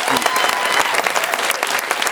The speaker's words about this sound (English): So can we get a huge round of applause for that prevention?